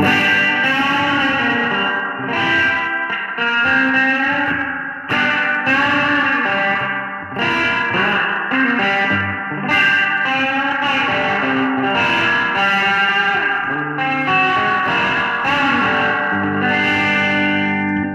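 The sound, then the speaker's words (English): A Gibson Baldwin Signature Les Paul electric guitar played through a Boss Fender '63 spring reverb emulation: loud, slightly gritty chords and riffs ring on continuously with a lush, washy tail, and no one speaks. “Let's go ahead and use the reverb with it. Let's do the Boss 63 Fender Reverb.”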